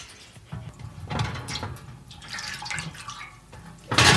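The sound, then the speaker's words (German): About two liters of water splash and pour onto a deep metal baking tray for the oven in uneven gushes, fairly loud, ending with a sharper burst of splashing; no one speaks. “Ich nehme mal so zwei Liter auf so ein Backblech.”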